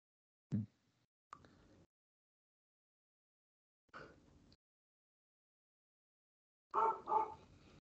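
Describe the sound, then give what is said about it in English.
A dog barks excitedly in a few short, separate bursts spread across several seconds, the last one a quick double bark, with quiet gaps between and no talking. “Dog's excited about this main event.”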